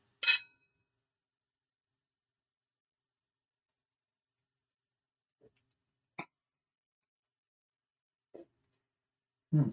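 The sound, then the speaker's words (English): A single bright clink of glasses touching in a toast rings out at the very start, followed by near silence broken by a few soft, brief sounds like sips or swallows of a vermouth cocktail. “All right, ready? Here we go, baby. Cheers.”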